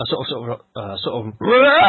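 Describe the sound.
A voice imitates a wordless shriek: a couple of short voiced bursts, then a loud, sustained cry that slides upward in pitch.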